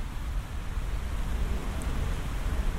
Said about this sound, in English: Oh wow, you can really hear the rain now in the leaves above me.